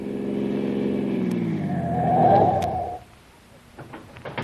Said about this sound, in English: Car behind is coming fast.